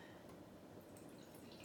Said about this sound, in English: Now, it says here, if you'd like, you can pour yourself a glass of wine. I'm gonna take up on that offer.